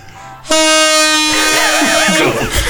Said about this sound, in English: Terrible at saxophone.